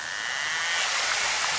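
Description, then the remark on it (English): A narwhal's hunting buzz as it closes in on food: rapid clicks blurring into a harsh, high-pitched whirring drone that holds steady and swells slightly louder over its short run, with no voices. “Well, scientists realized that narwhals made this noise when they were getting closer and closer to food.”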